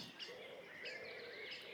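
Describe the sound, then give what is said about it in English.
Birds chirping softly near a farmhouse at dusk as they settle into their trees for the night, a steady overlapping chorus of thin, high calls and short trills with no one talking. “I look up and see birds settling into their trees for the night.”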